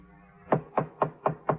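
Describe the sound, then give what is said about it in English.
Five firm knocks on a door on Gorell's floor at the Prince Hotel, evenly spaced in a steady rhythm, fairly loud against a quiet background with no voices. “I got to Gorell's floor, and when the sergeant was a few steps behind me, knocked on the door.”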